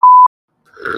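A short steady electronic beep, then after a pause a brief, rough, throaty burp. No one speaks.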